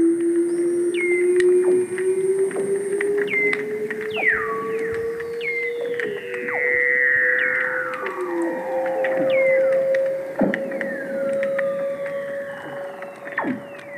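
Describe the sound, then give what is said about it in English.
Weddell seal calls ringing underwater: a long, slowly rising tone slides upward beneath eerie descending whistles and chirps, with sharp clicks scattered throughout, loud with no voices. “The otherworldly song of Weddell seals”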